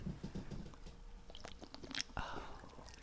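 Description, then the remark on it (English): A slim soda can snaps open with a sharp crack and a short fizzing hiss, after quiet slurping sips. Nobody is talking. “I actually heard that Coca-Cola manufactured their cans to snap louder when you open it, so then people want to drink a can because they hear that satisfying sound.”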